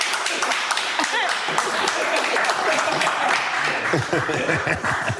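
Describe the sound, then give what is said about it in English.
A steady burst of applause from several people, a dense, bright patter of claps filling the whole stretch, with voices talking and laughing underneath. “What the hell are you clapping for?”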